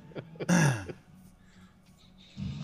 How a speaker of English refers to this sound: Well, did it, and you've been coughing this whole time, too, yeah.